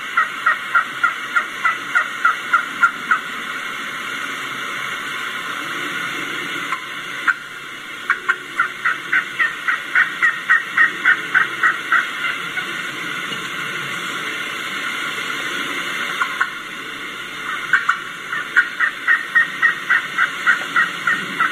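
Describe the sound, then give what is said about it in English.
A turkey gives a run of sharp clucks, putts and cuts mixed with yelping calls, repeated in quick uneven bursts over a steady background hiss, with no talking. “hear a few cuts, a few putts, clucks, sharp pitch clucks.”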